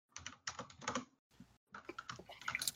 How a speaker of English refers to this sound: I hear a mechanical keyboard.